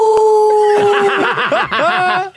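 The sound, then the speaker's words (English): Several people howl together like wolves at the moon, starting with long steady tones that break into wavering, bouncing pitches for a couple of seconds, loud, with a hint of laughter mixed in. “Can we howl at the moon together?”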